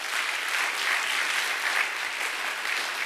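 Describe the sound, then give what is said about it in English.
A crowd applauds steadily, a dense, even wash of many hands clapping at once that holds a constant level throughout without rising or fading, and no voices stand out. “Yeah, let's clap for that.”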